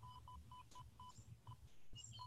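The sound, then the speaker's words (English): Rapid electronic beeping from a radiation exposure meter, short high-pitched tones repeating about every quarter second over a steady low hum, with crackly noise bursts in between. “And if I approach it really close, then it's beeping much, much faster and it's much more noisy.”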